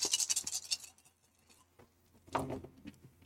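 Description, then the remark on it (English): Seven dice are rolled for hit locations, rattling and clattering in a quick burst of bright, scratchy clicks. They fall quiet, then a second shorter round of tumbling clacks follows a moment later. “So I'm going to roll 7 dice.”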